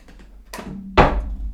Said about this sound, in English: Sorry, having technical issues with our chair again. Technical issues.